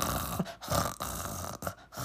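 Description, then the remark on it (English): A voice imitates snoring with a run of rough, raspy, rattling breaths, about four short pulses at a fairly steady rhythm, moderately loud and with no other talking. “Snoring.”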